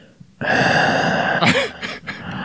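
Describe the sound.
A person makes loud, exaggerated heavy breathing, a long rasping breath followed by a few shorter huffs, performed for comic effect rather than natural breathing.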